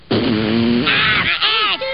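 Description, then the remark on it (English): A voice imitates a fart, likened to Cartman from South Park farting fire, with a low, buzzy, sustained raspberry lasting most of a second, then breaks into higher, wavering vocal sounds. “Dude, he's farting fire!”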